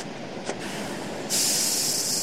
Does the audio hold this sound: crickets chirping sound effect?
no